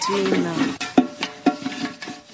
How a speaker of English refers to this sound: On Sundays, it's my turn to wash the plates and the pots, and that is what I am doing now.